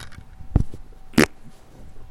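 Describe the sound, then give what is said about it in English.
Two short bursts of low, rumbling noise about half a second apart, the second buzzier and broader: a fart blown right into a microphone, with no talking. “No, I just farted on my microphone.”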